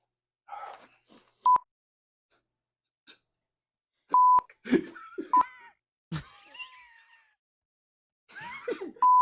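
Four short, sharp electronic beeps at a steady pitch, spaced irregularly, interrupting bursts of gasping, groaning and laughing-like vocal noises from people.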